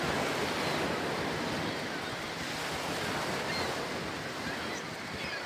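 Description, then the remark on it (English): Steady coastal ambience of surf and waves washing continuously, with seagull sounds and a rushing wind-like hiss filling the background at a constant, fairly loud level throughout. “I guess we're at the coast. And that's why there's the seagull sounds.”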